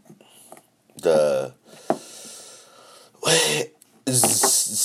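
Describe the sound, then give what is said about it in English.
Three harsh, raspy coughing bursts come from a man in another room who is smoking a Stizzy vape of Piscotti cannabis, each loud and spread across a second or less, with a brief sharp click between the first two and a low background hiss. “You can probably hear him coughing in the other room.”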